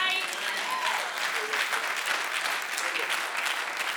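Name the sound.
audience clapping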